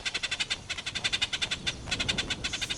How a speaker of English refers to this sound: There's a response from above. A small brown and white bird swoops down to land in an acacia tree and uses a call it only uses to talk to humans.